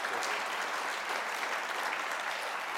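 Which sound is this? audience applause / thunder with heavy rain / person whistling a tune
audience applause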